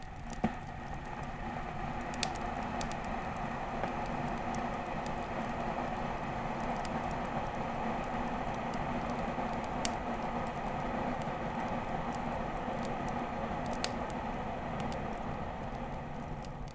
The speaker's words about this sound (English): You reboil the kettle.